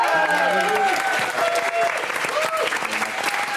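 A crowd applauds the quiz contestants loudly and steadily, dense clapping filling the whole stretch, with a few cheers and whoops rising above it.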